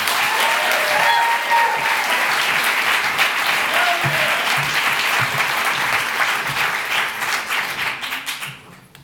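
Sustained applause from an audience, a dense wash of many hands clapping at steady volume before tapering off near the end, with faint voices mixed in.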